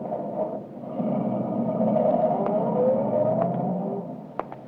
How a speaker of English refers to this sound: Cooper walked to his car, got in, stepped on the starter, and drove off.